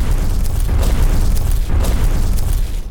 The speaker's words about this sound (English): Up next, I know we had to make some dinosaur stomping sounds, and they sound like this.